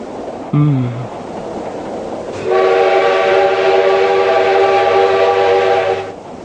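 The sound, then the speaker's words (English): A train rumbles steadily, gives a short horn blast, then grows louder as it seems to roar into a tunnel with a long, sustained whistling tone that cuts off near the end. “After what seemed an eternity of silence between us, the train entered a tunnel.”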